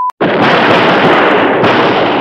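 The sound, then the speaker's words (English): A short beep, then a loud volley of gunfire from ancient cult revolvers. The shots come so rapidly that they merge into one continuous, dense crackling roar for about two seconds, with no voices. “Oh my God, all we have are these ancient cult revolvers! Yeah, but they'll have to do. Just load up!”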